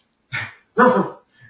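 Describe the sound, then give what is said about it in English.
A dog makes a fairly loud two-part growly vocalization that sounds like it's saying "hello," followed by a brief faint grunt. “Yeah, heard hello out of this dog.”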